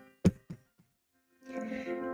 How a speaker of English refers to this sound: I heard the loud thump on the door, a smile curling my lips in anticipation as I looked around the morning room at my sisters.